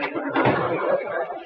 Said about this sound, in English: His wife, Sapphire, who's been out shopping, is just putting the key in the door.